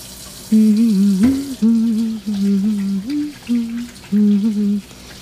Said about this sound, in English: I need to do these dishes.